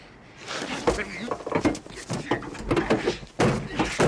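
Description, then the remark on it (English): A man slams his car door shut again and again in quick, uneven succession, each bang a sharp thud, with some voices mixed in underneath. “He's having a ball with his car door.”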